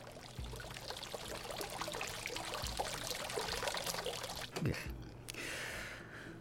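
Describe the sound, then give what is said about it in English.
Water runs and splashes steadily from hundreds of fountains pouring warm water from cherub-shaped mouths in a cleared area of a swamp, a continuous gush with bright splattering droplets throughout, briefly interrupted by a louder burst before the flow settles again. “And in the place of all this nature were hundreds and hundreds of fountains, all running and splashing warm water out of their cherubic mouths.”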